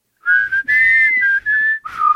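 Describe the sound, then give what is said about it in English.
A short whistled signal tune of four sustained notes, slightly wavering, with the final note dropping noticeably lower. No one speaks. “And this is where we get the woo, woo, woo, woo. I can't whistle very well.”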